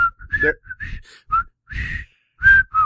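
A person whistles a bouncy, choppy tune in short bursts of rising and falling notes, fairly close and clear, with people's voices murmuring underneath.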